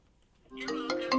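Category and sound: signal or alarm, phone ringing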